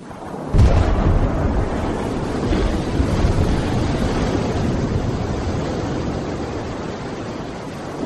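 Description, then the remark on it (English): A massive thermonuclear bomb explosion from the U.S. military's Castle Bravo test of March 1, 1954, the largest nuclear test in U.S. history, erupts after a brief silence, its sharp onset giving way to a deep, continuous roaring rumble that stays loud and heavy for several seconds, with no voices. “This thermonuclear explosion was the largest nuclear test in U.S. history.”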